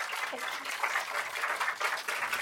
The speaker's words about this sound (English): Thank you. And round of applause.